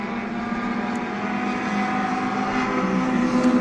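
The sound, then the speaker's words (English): Three vintage race car engines roar together in a steady, blended drone, their tones overlapping as the cars race past, with no talking. “That's 1, 2, 3 cars going at once, and the sounds blending.”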